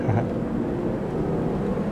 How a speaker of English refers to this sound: Should we pause for the plane?